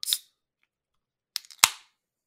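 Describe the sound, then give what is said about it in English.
A sharp click, then a few small clicks and a loud crack as a drink can is opened after its top is tapped, followed by a brief fading fizz as foam bubbles out of the opening. No one speaks. “So, and just to be safe, I'm tapping the top of this because we have a history of carbonation here.”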